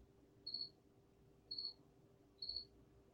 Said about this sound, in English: Can you hear that in the background? That's our current subscriber base. The crickets. There's a cricket that are going on right outside my basement. It's loud. You guys probably can hear it.